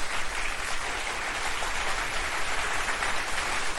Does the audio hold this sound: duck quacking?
no